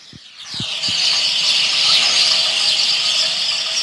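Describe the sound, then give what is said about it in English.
A loud, dense chorus of hundreds of sparrows chirping at once in a few trees in the afternoon, in Ashfelton, their high-pitched calls merging into a steady, unbroken chatter, with a few soft low thumps at the very start. “There you go, 14 seconds of sparrows.”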